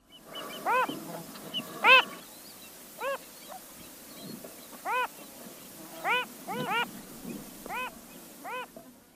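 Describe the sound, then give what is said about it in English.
A male phalarope sings a scattered series of short, nasal, harmonic calls, some single and some in quick pairs or triplets, over a faint, steady background hiss. “Like many fathers, the male phalarope tries to sing with usually more enthusiasm than melody.”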